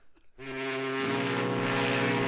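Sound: foghorn sound effect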